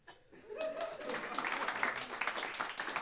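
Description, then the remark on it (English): After a brief quiet moment, an audience at the Meltdown comedy roast show breaks into dense, steady applause that stays loud to the end, with a few voices cheering or calling out amid the clapping. “Go ahead and clap.”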